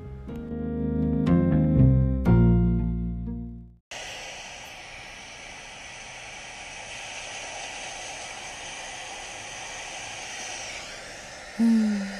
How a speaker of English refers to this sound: Do you hear the sound of the ocean?